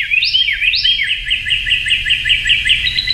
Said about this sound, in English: We found out this is the California wren. Carolina wren. The Carolina wren, which is sounds like this.